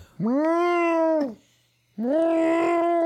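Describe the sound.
A man's voice imitates Donald Trump as an alley cat with two long, loud, drawn-out yowls, the first rising then sliding down, followed after a short pause by a second strained, raspy wail.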